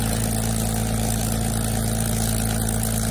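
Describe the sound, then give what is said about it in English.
A big Merlin piston aircraft engine runs steadily and loudly, a deep throbbing drone with strong low harmonics and a rough mechanical rasp, no voices over it. “It's a beautiful engine noise, isn't it?”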